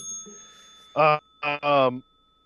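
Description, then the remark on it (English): A bell is rung three times in quick succession, loud, with the last ring held longest, followed by faint background murmur. “Yeah, ring the bell again for me too as well.”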